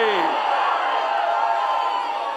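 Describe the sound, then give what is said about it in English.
A crowd of people standing up on a Sunday morning shouts and cheers together in a loud, dense roar, with a rising whoop at the start, sustained without pause for the whole stretch. “Because people are standing up shouting on a Sunday morning.”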